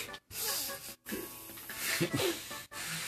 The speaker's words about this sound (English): The way I started breathing, though, like, I started breathing like I was actually pissed, just like.